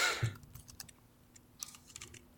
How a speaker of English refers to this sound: I actually rolled the wrong dice.